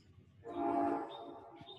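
A train horn blares loudly as the train passes by, its sustained harmonic blast swelling then easing into the rumble of rolling cars, with no voices present.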